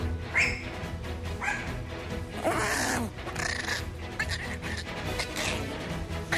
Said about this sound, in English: The dog's not right. Back on the wake up crew. What dog makes that kind of sound? That's when she's in attack mode.